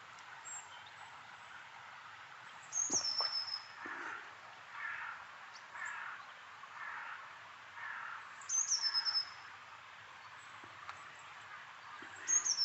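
A flock of blue tits and great tits calling: thin, high, descending whistles return every few seconds over a steady run of softer repeated chattering notes, with no talking.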